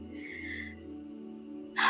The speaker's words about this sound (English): So you might hear my little puppy snoring. She like laying on my lap now.